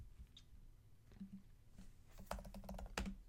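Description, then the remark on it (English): Rapid clacking of keys on a computer keyboard, irregular bursts of typing that grow denser and louder toward the end, with no voices. “As the microphone picks up me typing.”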